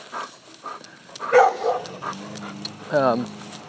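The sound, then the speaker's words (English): A dog barks a couple of times near the top of the Hewitt Street hill, sharp yelps spaced a second or so apart, with faint voices and outdoor background murmur underneath. “Another dog temptation.”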